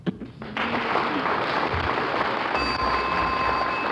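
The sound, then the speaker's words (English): A quiz show bell rings out to end a contestant's turn, a sustained, bright multi-tone chime about two-thirds of the way through, sounding over a steady wash of audience applause that started moments earlier. “There's the bell. Now your turn is over”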